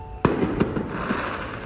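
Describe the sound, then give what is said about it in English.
Fireworks bang outside for Juneteenth: a sharp pop followed by a couple of softer bursts through a steady background hum, with no one speaking. “There's still fireworks going on outside for Juneteenth.”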